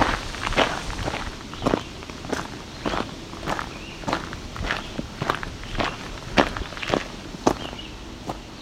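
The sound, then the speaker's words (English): Steady footsteps of a person walking back into the woods crunch along at an even walking pace, about fifteen steps with light rustling underfoot and no voices. “Well, I'm gonna move back into the woods again.”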